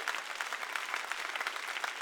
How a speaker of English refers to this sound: Come on, clap your hands and thank God.